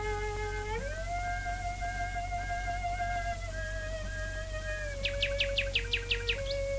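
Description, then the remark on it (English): A nightingale sings a quick run of repeated bright chirps over sustained, mellow cello notes improvised by a woman in a back garden thicket south of London, broadcast live by the BBC on 19 May 1924 via a mile of cable to the telephone exchange, heard through a steady low hum and hiss. “Where a mile of cable linking up to the telephone exchange brought the song of the nightingale singing that night with her on her cello, improvising and playing some pieces.”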